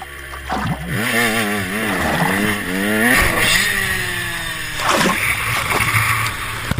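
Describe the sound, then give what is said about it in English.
A sound effect: a motorcycle engine revs up and down in loud, wavering surges, with water splashing and a few sharp gunshots cutting through. No one speaks. “It's a gun shooting, uh-huh. And then you hear a motorcycle, like, rev up its engine.”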